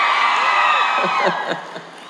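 A crowd cheers and whoops, many overlapping high voices forming a dense roar that holds steady, then trails off over about two seconds with a few last shouts.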